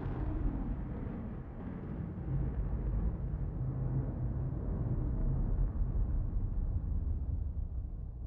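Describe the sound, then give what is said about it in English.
A massive explosion coming from an elementary school rolls out as a deep, heavy rumble, roaring steadily without letup for several seconds, thick with low booming energy and no voices present. “as we hit the divide, I hear a massive explosion coming up from the elementary school.”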